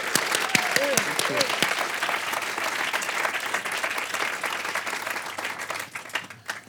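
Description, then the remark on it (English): An audience in Cornwall claps steadily in a dense, crackling wash of applause welcoming a novelist, with a brief vocal whoop or cheer early on, before the clapping thins and fades out at the end. “Could we give her another really welcoming Cornish round of applause?”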